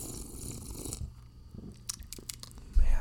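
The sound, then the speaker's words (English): A sip of beer while tasting and rating it: a soft airy slurp, then a few wet mouth clicks and a swallow, ending in a low thump. Nobody speaks. “Let me take one more sip here.”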